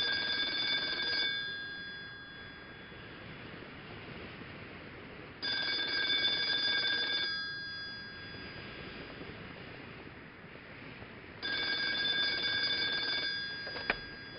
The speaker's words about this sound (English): Phone rings.